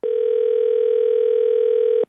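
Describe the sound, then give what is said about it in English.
A single two-second burst of a telephone ringback tone, the steady electronic buzz heard while an outgoing call rings, loud with nothing else around it. “So a few months later, I call him.”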